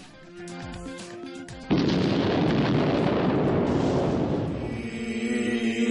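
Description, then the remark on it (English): A bomb explosion tears through a taco restaurant, erupting suddenly and loudly after a short tonal lead-in, then giving way to a long, roaring rumble of debris and fire that carries on to the end. “As the explosion tears through the Cobra Taco Shack, can things get any worse for a gunplay-happy heroes?”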